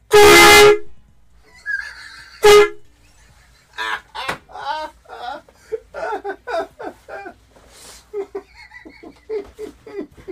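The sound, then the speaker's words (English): A loud, blaring air horn blast, held long like a truck's get-out-of-my-lane honk, lasting under a second, followed by a shorter second honk, then a person begins talking over a faint background rumble. “That was the longest I held it. That was like a get out of my lane, like truck.”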